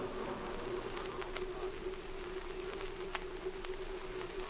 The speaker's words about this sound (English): What is this strange plane flying over the ranch late at night?